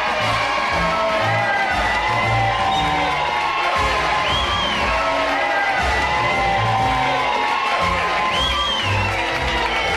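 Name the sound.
crowd cheering and whooping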